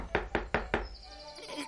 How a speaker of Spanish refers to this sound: Llegó a la casa de la abuela y llamó a la puerta.